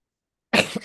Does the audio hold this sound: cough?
yes